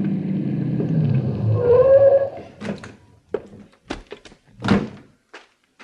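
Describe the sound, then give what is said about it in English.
Kornistoy's car approaches, its engine rumbling and winding down with a short squeal as it stops, then several sharp thunks follow, like doors opening and slamming shut. No one speaks. “They were packing up their equipment to leave by the back door when around the curve I saw Kornistoy's car approaching.”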